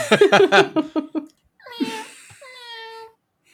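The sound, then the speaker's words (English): A short burst of rapid laughter, then a person's voice imitates a cat's meow with a drawn-out, wavering tone that rises and slowly falls, moderately loud. “they kind of meow”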